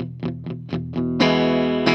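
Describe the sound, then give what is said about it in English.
An electric guitar chord is strummed on a two-pickup Gretsch Anniversary with Filtertron humbucker pickups, several times in quick rhythmic chops, then rung out loud and sustained with a bright, slightly gritty tone, without any talking. “Rip a chord for me. Let me hear that thing.”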